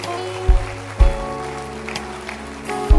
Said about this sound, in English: Clap your hands for souls saved. For those who have taken decisions. Keep clapping your hands. Keep clapping your hands.